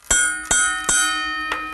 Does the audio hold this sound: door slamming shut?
no